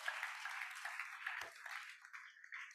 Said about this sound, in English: Can we give a round of applause to God and God alone right now?